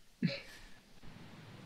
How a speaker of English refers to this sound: Someone's alarm's going off in the back. Yeah, it's mine.